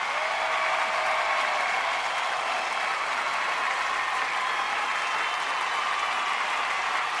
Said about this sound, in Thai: ก็ขอเสียงปรบมือดังๆนะคะให้กับนักธุรกิจแอมเวย์ระดับเพชรคู่นะคะ